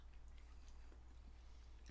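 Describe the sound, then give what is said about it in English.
Chewing of a crunchy treat covered in real sprinkles, with a few soft, irregular crunches over a low steady hum, quiet and with no talking. “I mean, it's like you said, it's real sprinkles because you get that crunch and you're like, what the hell is that?”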